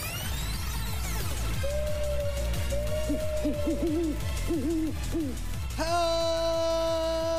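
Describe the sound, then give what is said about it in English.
An owl hoots several times in short, wavering calls over a steady rhythmic musical backing, ending with a bright sustained tone, opening the Owl Post edition of Harry Potter and the Boys. No one speaks. “Hoot hoot, it's Harry Potter and the Boys, our post edition.”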